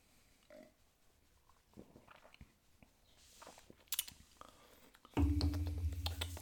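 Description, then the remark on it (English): Wet swallowing sounds as someone gulps a beer, a series of soft clicks and gulps, followed by a sudden louder, sustained rush of noise near the end. “Right, let's have a go on it then. I don't think I'm going for a steady gulp.”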